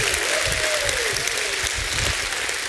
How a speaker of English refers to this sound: And if you're thankful that God forgave you and He still forgives you every day, you ought to give Him a hand clap and a shout of praise.